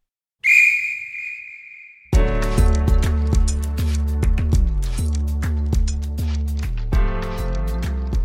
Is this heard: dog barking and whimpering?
no